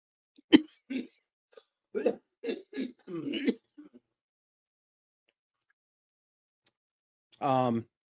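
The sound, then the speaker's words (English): A sharp cough followed by a rapid string of rough coughs over a few seconds, then a pause and a brief voiced sound at the end. “I think I'm allergic to microphones because I really haven't coughed that much all night.”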